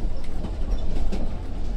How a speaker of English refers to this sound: So, the three of you sit again in silence for a time, as the train navigates its way around a series of small hills.